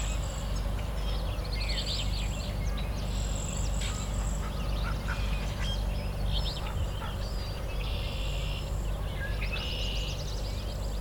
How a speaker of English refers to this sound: Some kind of duck flying past me. Might be female wood duck, but I don't know. I think it's a female footed merganser, actually. It's not whining like a wood duck would be. Yeah, it's a footed merganser just flew by.